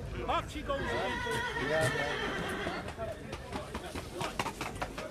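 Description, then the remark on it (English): A trotting horse neighs loudly at a horse fair, a long wavering whinny, with hoof clip-clops and a busy outdoor crowd murmuring and talking in the background. “This side of the ground is out in the old trotters. All trotting horses.”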